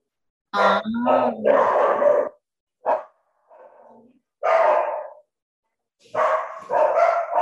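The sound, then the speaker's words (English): Several mostly big dogs in kennels bark in short, loud bursts with gruff grunting growls between them, the barks coming in irregular clusters with brief pauses. “Do they share the kennels? They don't.”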